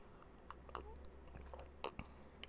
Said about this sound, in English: So let me take a sip of my drink.